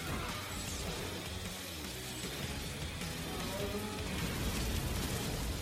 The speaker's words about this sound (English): There's so many explosions.